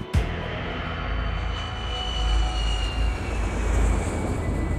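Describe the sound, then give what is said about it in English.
A steady, droning airplane engine roars throughout, with a deep rumble and a faint high whine, swelling slightly in loudness as the plane carrying Ingrid Betancourt and Clara Rojas flies over Colombia. No voices are heard. “Clara Rojas was in crisis mode when their plane landed for a brief layover.”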